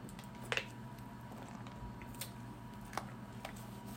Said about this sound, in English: I have to get a drink of water here, guys.